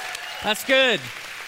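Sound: audience cheering and applauding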